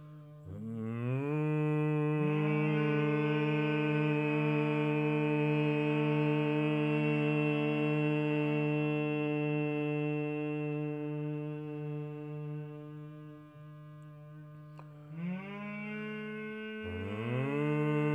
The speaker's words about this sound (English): Now take a deep breath into the belly. While breathing out, make the humming sound 10 times, as long as possible.